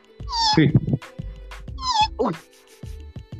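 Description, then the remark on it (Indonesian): A person imitates a cat heard upstairs at night, giving two drawn-out, wavering meows about a second apart, fairly loud, with breathy vocal noises in between. “Tak, aku dengar kucing tau.”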